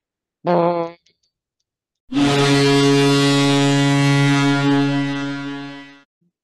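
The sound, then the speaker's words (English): A person imitates a hockey goal horn with their voice: a short buzzing blast, a brief pause, then a long, loud, sustained droning honk that fades slightly at the end. “can you give us your best goal horn sound to transition us to overtime?”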